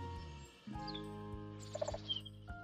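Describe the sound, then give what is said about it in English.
Soft outdoor ambience with a few quick bird chirps and short tweeting calls, fairly faint against a steady low background hum, no talking. “Cue the nature sounds.”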